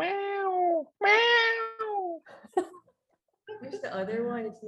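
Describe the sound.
A cat meows loudly several times in quick succession, drawn-out cries that slide downward in pitch, followed by a brief pause and then people talking and laughing.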